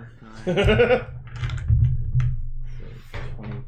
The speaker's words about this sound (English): Apologies if the dice rolling noise is annoying. It's ASMR, that's what we're going to call it.